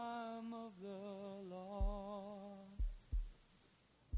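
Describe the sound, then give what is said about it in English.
Deep, muffled heartbeat thumps, one and then a lub-dub double beat, pulse beneath a steady, humming synth drone at the opening of a song; no voices. “That heartbeat.”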